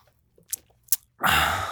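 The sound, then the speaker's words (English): Quiet wet mouth sounds as someone takes a couple of quick sips of an ice-cold Shipyard Pumpkin Head Ale, a pumpkin beer, followed by a loud, steady breathy rush of air. “One more sip for the boys.”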